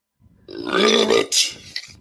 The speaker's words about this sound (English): Whoa, that was a hell of a belch. Damn.